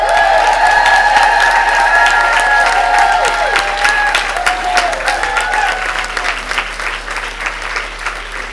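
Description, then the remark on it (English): A crowd at the final session of FiLiA 2019 bursts into sustained applause with scattered cheers and whoops for a member of the organising team, loud at first and slowly thinning out over several seconds. “She can't hear us because, of course, she's on the phone dealing with yet more issues, but please can we hear it for”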